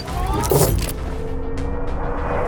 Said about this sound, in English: The car leaves.